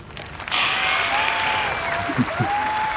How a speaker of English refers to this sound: Uproarious applause.